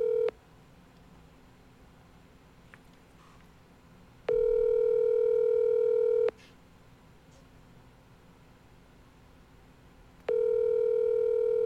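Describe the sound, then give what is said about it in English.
A phone ringback tone over a call line as the call rings unanswered before reaching voicemail: a steady electronic buzz repeating in two-second bursts separated by long quiet pauses, fairly loud and clear, with no one speaking. “Is it ringing?”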